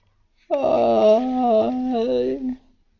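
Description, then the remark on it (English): A person gives a long, voiced yawn lasting about two seconds, a clear moaning tone that swells and then trails off, with no other talking. “Yawn.”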